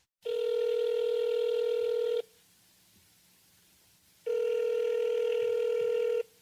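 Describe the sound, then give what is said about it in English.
A phone call to sex columnist Dan Savage's cell phone, ringing on the caller's end: two steady, buzzy electronic rings, each about two seconds long, separated by a two-second pause, clear, with no voices. “Why don't we give him a call?”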